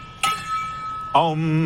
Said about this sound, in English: I got my gong here on the road.